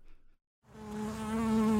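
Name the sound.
bees buzzing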